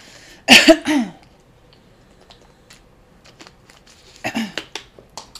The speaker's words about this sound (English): Clear my throat.